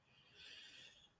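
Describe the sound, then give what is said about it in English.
A single soft, airy inhale through the nose, the third of three breaths in a breathing exercise, swelling gently and easing off over about a second, quiet, with no talking. “And then breathing in for a third time.”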